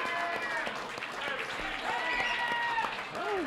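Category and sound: crowd, crowd applause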